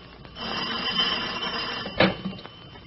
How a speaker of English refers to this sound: Just as we opened the door, the telephone rang.